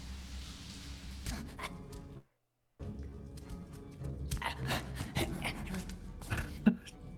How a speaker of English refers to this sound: Yeah, Gollum's labored breathing is a constant in this universe. It really is disturbing after a while.